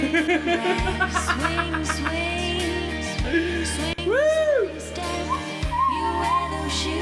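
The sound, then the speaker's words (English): A death whistle is blown in a run of rising-and-falling shrieking blasts, loud, over a steady low hum, with people laughing and chattering in the background. “It's a death whistle party now.”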